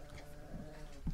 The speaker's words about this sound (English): The dog is not happy with that theory. Lola is growling.